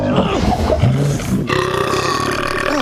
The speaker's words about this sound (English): I get to talk about the burping movie. Fantastic. Monster Trucks.